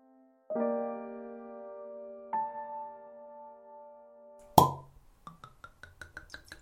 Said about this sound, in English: Just cracked open a bottle of a Passamento. Whenever I see it on the shelf, I've always got to grab a bottle. It's a bit expensive, but it's so good. It's got like a nice wax top as well.